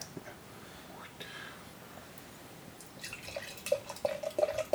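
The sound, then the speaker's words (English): A Griffin Claw pumpkin spice ale is poured into a glass, faint, with a soft hiss building into splashy gurgles that rise in pitch over the last couple of seconds as the glass fills. “I'm trying to cause as much background noise as possible for our listeners. Oh, can you hear it pour?”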